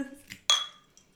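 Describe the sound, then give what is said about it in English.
A single bright clink of glasses touching in a toast, fairly loud, its high ringing tone fading over a moment, with a brief murmur of voices just before. “It's okay, same. Cheers. Cheers.”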